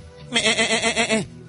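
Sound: sheep bleating sound effect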